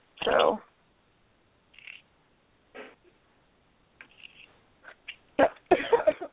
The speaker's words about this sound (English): Excuse me. Coughing up a lung.